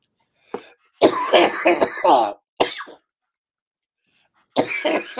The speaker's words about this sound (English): I'm coughing.